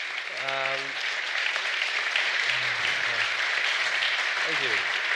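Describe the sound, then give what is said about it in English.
A crowd at a live evening event claps steadily and densely for the guests, a continuous wash of applause, with a few voices calling out and cheering over it. “We give a big round of applause to our guests,”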